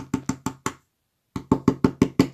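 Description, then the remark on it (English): A large pileated woodpecker drums on a dead tree, sending wood chips flying: four sharp, woody taps, a pause of about half a second, then a steadier run of seven loud, resonant strikes. No voices. “They watched the large bird drum away at a dead tree.”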